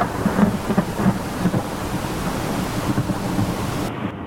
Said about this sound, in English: This damn storm is going to ruin everything. We're going straight into the heart of it.